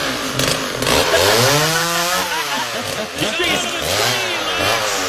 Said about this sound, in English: Pass me the chainsaw. Thank you for getting it fired up.